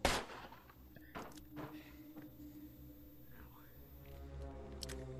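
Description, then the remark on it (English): A few loud, booming gunshots fire at irregular intervals, each a sharp blast that quickly decays, set against a steady low droning hum. “Gunshots booming!”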